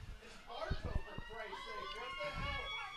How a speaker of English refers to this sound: And there goes that. The fire truck.